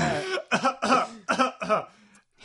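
A loud series of about five rough coughs in quick succession, the last one trailing off into a faint throaty rasp.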